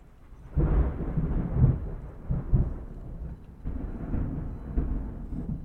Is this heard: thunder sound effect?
yes